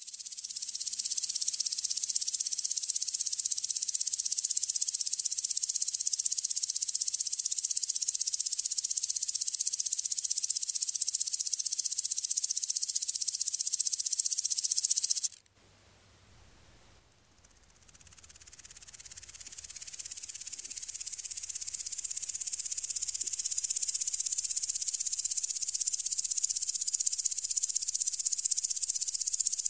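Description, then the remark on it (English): Grasshoppers chirp in a steady, high, hissing buzz that runs unbroken for about fifteen seconds, cuts out abruptly for a moment, then gradually swells back to full strength. No one speaks. “And when I was a kid, I used to go, you know, catching grasshoppers in my hands every chance I could.”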